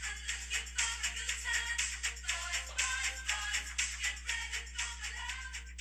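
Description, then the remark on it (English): A phone buzzes on vibrate with a steady low hum under quick, repeating rattly pulses that keep going for several seconds without pause. No one speaks. “Gotta take it off vibrate right there.”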